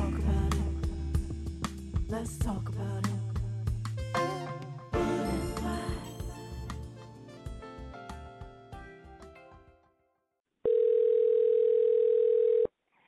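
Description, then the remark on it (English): Music plays and fades out, followed by a brief silence and then a single steady two-second burst of an outgoing phone ringing tone as a call is placed to a guest, clear and fairly loud. “we're giving him a call, Walt B. It's ringing.”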